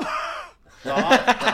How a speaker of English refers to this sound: All right, come forward. Bit of classic body comedy here. Yo. Cough.